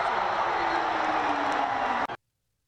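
crowd roaring

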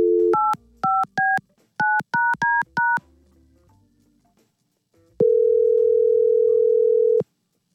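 telephone dialing and ringing

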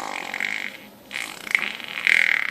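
fart sound effect

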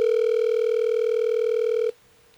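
outgoing phone call ringing

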